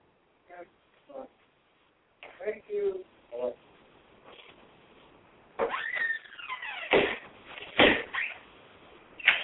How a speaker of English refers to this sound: Sorry about that. You got to hear the door opening and closing right behind me.